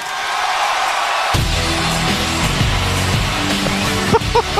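A loud, sustained roar of a cheering crowd, starting as a hiss of noise and swelling into a dense wall of voices with a few sharp shouts near the end.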